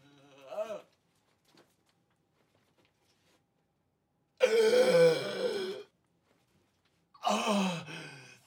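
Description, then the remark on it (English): Wordless vocal sounds: a short strained grunt, then a long drawn-out groaning exhale, and later another breathy gasp-like cry, separated by silence. “But before that, we get grunts and groans and gasps.”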